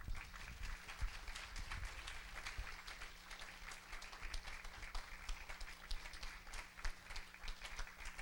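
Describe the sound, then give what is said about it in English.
A church audience applauds God steadily during a service, dense overlapping claps for several seconds, with a low steady hum underneath and no voices rising above the clapping. “Let's clap him.”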